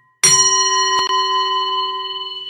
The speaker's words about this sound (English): And I have my nice bell. So we're gonna start the counting and mantra when you hear this. And we'll stop when we hear this.